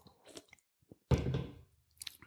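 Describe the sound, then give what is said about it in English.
Wet mouth noises as someone sips from a can of Coke, with small slurps followed by a louder half-second gulp and fizzy rush, then a few faint smacks. No talking. “I'm going to drink a sip of a Coke”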